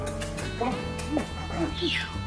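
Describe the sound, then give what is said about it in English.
A dog gives a series of short, high yips and whiny cries, several in quick succession, moderately loud over a steady background hum. “That's your damn dog.”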